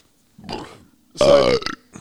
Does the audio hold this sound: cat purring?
no